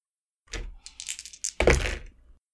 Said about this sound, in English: Go ahead and give me a desperate roll, 3 dice.